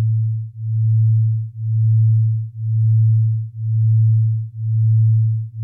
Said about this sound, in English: Binaural beats are what happens when you take two steady tones with slightly different frequencies, so less than 40 hertz between them, and you play one through each ear. So when you listen to both of these tones, you start to hear them wobbling,